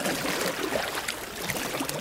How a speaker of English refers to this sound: We're doing it! We're pushing the boat across the Nile together. Keep moving quickly and we'll be across in no time.